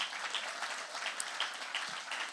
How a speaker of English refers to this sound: Thank you for your sacrifice, for the faithfulness, the excellence, and the passion with which you lectured. Can we also just give them a round of applause?